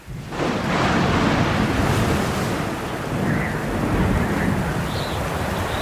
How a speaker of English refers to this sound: All he could see was water, and all he could hear was wind and rain and the faint sound of the old faithful boat imploring him to hold on. Hold on, Cap'n. Night drew in, and still the storm raged.